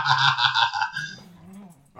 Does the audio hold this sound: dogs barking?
yes